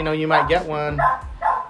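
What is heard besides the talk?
dogs barking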